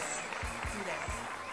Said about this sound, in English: We're gonna give her a round of applause. Show her some love.